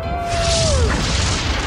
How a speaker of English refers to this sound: Because that is classic thunder.